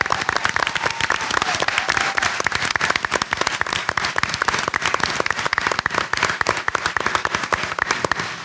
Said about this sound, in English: They really deserve a huge round of applause. They did amazing.